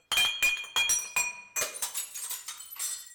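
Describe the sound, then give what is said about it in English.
Glass bottles clink together in a quick series of bright, ringing knocks, about five sharp strikes followed by a looser cluster of lighter jingling taps, with no voices. “Let's get the bottles out.”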